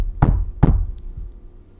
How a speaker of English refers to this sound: He's knocking at the door of your life.